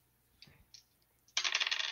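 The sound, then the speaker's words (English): A few light clicks and taps, then a sustained bright rattling clatter as two dice are rolled across a table during a game, fairly loud, with no voices. “I'll just make the roll.”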